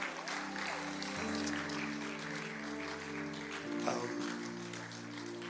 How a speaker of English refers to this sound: Put your hands together one more time.